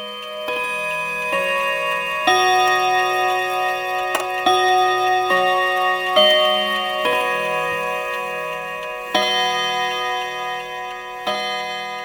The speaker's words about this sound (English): A mantel clock sat across from her and ticked hypnotically. Without ever looking up from her stitching, she would count the chimes to the hour.